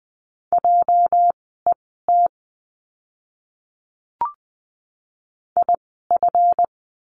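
Morse code practice words for the letter J sent at 20 words per minute: a steady mid-pitched tone keyed into crisp short and long beeps, in two bursts separated by a silent gap with a single soft click.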